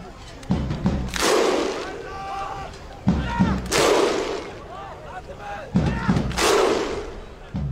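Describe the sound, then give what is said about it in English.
A Viking thunder clap: a large crowd gives three loud, evenly spaced claps, each met by a booming unison shout, with a slow, steady rhythm and a big stadium feel. “The thunder clap? Oh, yeah. The Viking clap?”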